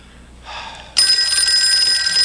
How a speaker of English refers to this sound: Oh, now we're getting phone calls.